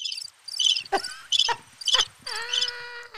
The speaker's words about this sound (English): Cricket, sure.